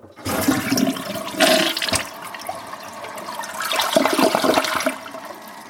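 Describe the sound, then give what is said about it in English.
A toilet flushes with a loud, rushing whoosh of water that surges, dips briefly, then swells again before draining away. No one speaks. “if you think about it, every time you flush that toilet, it's huge, the amount of water that's being used.”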